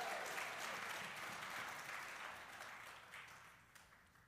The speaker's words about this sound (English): Come on! Let's give a round of applause for that tonight.